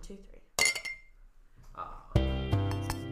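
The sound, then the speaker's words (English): Wine glasses clink together in a final cheers, a quick bright tap followed by a louder, ringing clink whose tone lingers, with faint voices murmuring. “we shall fill our glasses one last time and clink”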